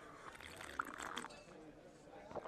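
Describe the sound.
Someone takes a quiet sip of a drink after a toast, with a short wet slurp and faint liquid sloshing. A soft murmur of voices sits faintly underneath.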